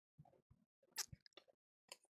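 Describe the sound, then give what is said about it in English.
A quick sip from a drink: a few short, wet mouth sounds, a soft slurp and swallow, then a light lip smack, all fairly quiet with no talking. “Sorry, taking a sip here.”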